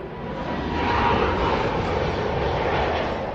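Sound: airplane landing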